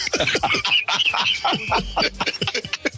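Harsh, raspy bird squawks repeat in quick, irregular bursts, loud, with a chattering, scratchy quality and no talking.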